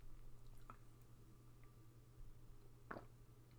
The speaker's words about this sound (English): Okay, I had to get a sip of water there.